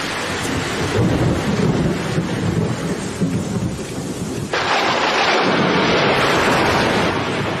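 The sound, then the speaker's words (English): Steady heavy rain pours down while thunder rumbles loudly throughout, with a sharp shift midway as the downpour intensifies into a dense, hissing roar, in a clip from the TV show Father Ted. No voices are heard. “Looks like rain, Ted.”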